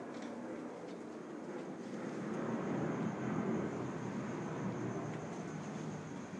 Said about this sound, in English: We now take you to this airplane.